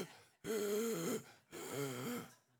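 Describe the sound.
A man voices two long, exaggerated gasping groans in a row, raspy and breathy with a wavering pitch, fairly loud, imitating a desperate, starving man who is fasting and crawling on the floor.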